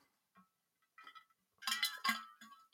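Someone takes a drink from a glass: a few faint sips and swallows, then a louder burst of bright glassy clinks and rattles as the glass is moved, with no talking.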